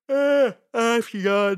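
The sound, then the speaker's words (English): A person yawns aloud, a drawn-out voiced groan that breaks into a couple of strained, sighing bursts before trailing off. Fairly loud, with no talking over it. “Okay, sorry, I yawned.”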